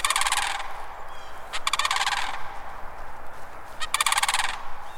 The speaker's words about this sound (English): On more than one morning, I've heard the arrival of these cranes, the slap of their substantial wings, and the echo of their almost prehistoric calls across the wet pine savannas near the Gulf Coast.